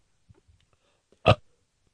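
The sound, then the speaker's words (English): A single short, loud forced burp, made by swallowing air, erupts after a moment of near silence, preceded by faint gulping and mouth noises, with no talking. “And then you can go on a Fezzy rant while burping.”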